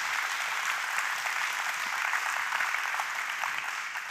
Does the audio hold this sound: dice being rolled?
no